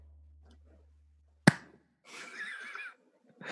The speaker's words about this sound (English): I'll do a little clap to begin.